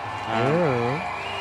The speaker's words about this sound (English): Oh, we got more cheers. Whistles. More bubbles.